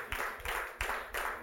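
An audience claps together in a steady, even rhythm, each burst of many hands landing at once, sharp and broad, with no voices over it.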